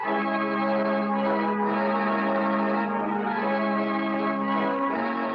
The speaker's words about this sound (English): This episode, The Bells of St. Peter's.